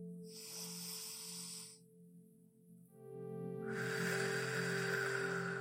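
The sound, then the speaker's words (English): A person breathes out slowly through an open mouth during a breathing exercise, soft and airy. A shorter breath comes first, then a pause, then a longer steady whoosh of air, all over a quiet sustained musical drone. “I'm breathing out with my mouth open.”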